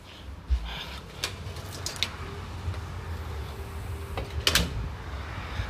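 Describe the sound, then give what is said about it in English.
A screen door is handled: several sharp clacks and rattles, with a louder bang near the end as it swings shut, over a steady low background rumble. No one speaks. “I don't want the door to lock, because earlier my mom's screen door had locked.”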